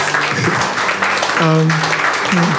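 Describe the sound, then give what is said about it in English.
An audience applauds with steady, dense clapping that fills the whole stretch, while a few voices call out or cheer over the noise. “Please clap to these guys.”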